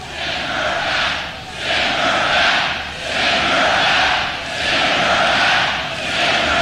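A large crowd roars and boos in loud, sustained waves, the noise swelling and easing roughly every second and a half with no single voice standing out.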